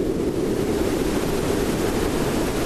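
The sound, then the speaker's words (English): A steady, dense wash of blended colored noise, purple, pink and blue noise mixed together, heavy in the low-mid rumble with a hissing top, sounding like a roaring storm or surf. It holds constant and loud throughout with no voices. “It sounds like there's a storm brewing outside, doesn't it?”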